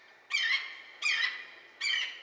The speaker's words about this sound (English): If you listen, hear them birds tweet.